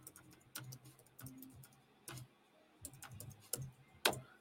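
Quiet, irregular clicks of typing on a keyboard, several sharp taps spaced unevenly with short pauses and no one speaking, as Romans chapter 8 is typed for Instagram.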